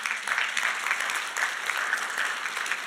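A crowd claps steadily, a dense wash of many hands applauding together at moderate volume, sustained throughout with no voices standing out; the applause congratulates a family on their new baby at a church service.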